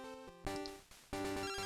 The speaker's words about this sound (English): Oh, we got a phone call.